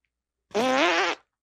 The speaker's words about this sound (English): I mean, at this point, I'm upset when a serious show doesn't include bird farts. How dare.